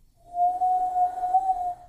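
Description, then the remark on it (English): A person whistles a single sustained note, holding a steady, clear pitch for nearly two seconds, fairly loud, with a slight wavering toward the end, like a lonesome western-style tone. “Wow, that would be a perfect sound effect in like an old like cowboy western.”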